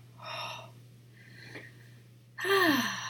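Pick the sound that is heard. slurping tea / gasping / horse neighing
gasping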